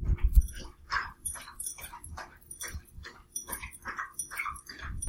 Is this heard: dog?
yes